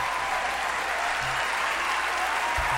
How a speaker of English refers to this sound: Listen to the fucking applause line that she got from the mixed martial arts is not a fuck you.